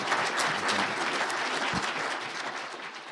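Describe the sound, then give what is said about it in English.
A church audience claps steadily, a dense, even wash of many hands that holds at a fairly loud level for a few seconds before easing slightly toward the end. “And I think we ought to give them a round of applause for that, and we thank you for them coming.”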